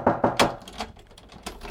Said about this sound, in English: Why are you knocking on my door?